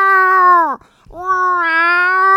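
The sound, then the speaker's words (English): A person imitates a distressed cat with two loud, drawn-out yowls. The first slides downward and breaks off, and after a brief pause a second long, wavering yowl follows. “You're like a cat that's like trapped in a box going to the vet.”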